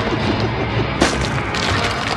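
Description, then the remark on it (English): A cracked stone gargoyle is kicked and breaks apart: stone cracks and crumbles in a dense, gritty rush of breaking debris, with one sharp splintering snap partway through and a steady grinding rumble underneath. “He began kicking the already cracked structure, and it started to break.”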